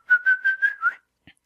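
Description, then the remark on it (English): A person whistles one steady, fairly high note for about a second, pulsing in five quick throbs, to call Gracie, a pet pig. It is clear, followed by silence and a faint click. “Yeah, I whistled and she came.”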